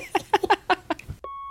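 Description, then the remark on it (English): A voice makes a quick series of vocal beep imitations, then a single steady, high electronic beep tone sounds clearly on its own before a voice memo plays, continuing until the end. “Here's some of those voice memos. Beep, beep. Play. Beep, beep, beep, beep.”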